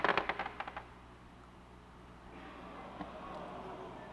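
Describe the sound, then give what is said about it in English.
A quick burst of small clicks as dice tumble and bounce, the rattling hits coming fast and fading within a second, followed by quiet with faint background noise. “I do not like this new dice camera. No. I hear it.”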